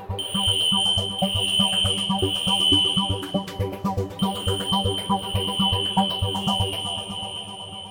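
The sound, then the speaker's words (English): A fire alarm blares with a steady, piercing high-pitched tone that cuts out briefly midway, then resumes over a dense, rumbling background of clatter and noise. “Literally, I wasn't going to speak with him, except the fire alarm went off.”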